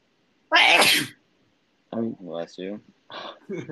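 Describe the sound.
A single loud sneeze bursts out with a sharp, breathy explosion, followed after a short pause by a few seconds of someone talking.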